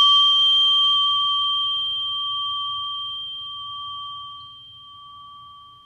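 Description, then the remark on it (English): A gong, rung a second time, rings out with a clear, sustained metallic tone that lingers and fades slowly over several seconds, heard on its own with a faint low rumble beneath. “I rang the gong once, and now I just rang the gong again.”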